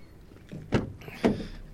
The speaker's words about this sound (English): Open the big wide opening door, step up.